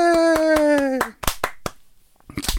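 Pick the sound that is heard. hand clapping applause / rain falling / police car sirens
hand clapping applause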